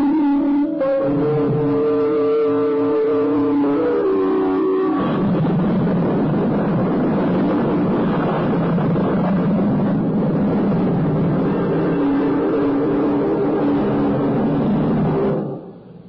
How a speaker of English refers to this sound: when the lightning made the house on the cliffs bright as day for a moment in time, and the thunder that followed 7 seconds later shook the Farringfords' home back to its genesis.